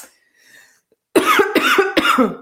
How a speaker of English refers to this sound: Okay, I am going to cough again for a moment. Excuse me here.